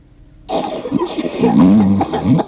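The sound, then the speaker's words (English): A person performs an exaggerated Ferris Bueller-style fake cough, a drawn-out, voiced and raspy hacking sound lasting about two seconds, loud, with nothing else audible. “Oh, we got to put the Ferris Bueller fake cough in there.”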